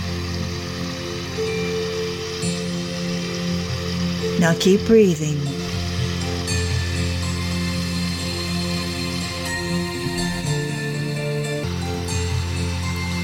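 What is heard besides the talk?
flowing water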